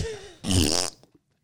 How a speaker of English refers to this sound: Yeah, I haven't had a button in a minute. I know. Jeez. Let's throw a fart in. We need it.